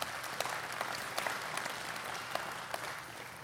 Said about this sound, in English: And now, here they are today, officially as our campus pastors over at Otis Orchards. That's amazing. You can clap for that.